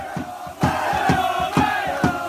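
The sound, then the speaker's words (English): A football crowd shouts and chants from the Shed End stands in a loud, sustained roar, with rhythmic accented bursts landing roughly every half second like a clapped or stamped chant. “That's your shouts from the shed end.”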